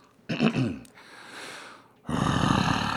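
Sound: person imitating a growl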